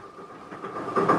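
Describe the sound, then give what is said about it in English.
A train rolls steadily along the rails toward Trieste, a continuous rumble with a faint rhythmic clatter that swells slightly toward the end; no voices are heard. “The amount of cool testosterone in this train cabin is incredible.”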